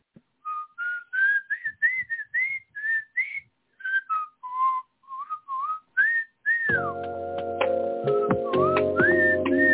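A person whistles a wavering tune in short, separate notes, clear and distinct. In the last few seconds a dense, buzzing harmonic sound joins in beneath the continuing whistle.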